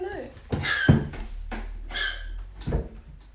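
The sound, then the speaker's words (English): A cat retching up a furball: a series of about four rhythmic, throaty gagging heaves with short pauses between them, fairly loud and strained. “He's having a furball.”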